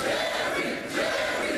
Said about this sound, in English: It's nighttime now, and the fire is lit with massive torches held by people in the crowd. The crowd is chanting, "Jerry, Jerry," toward the end, like it's the Jerry Springer show.